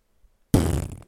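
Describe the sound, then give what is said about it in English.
A single loud fart-like noise, not actually a fart, bursts out of silence: a buzzy, rumbling blast lasting about half a second before cutting off abruptly. “It wasn't supposed to be a fart.”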